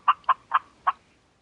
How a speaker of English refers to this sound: Oh, turkey. Okay. It's a turkey. All right. I'm going to play that a few times during the episode.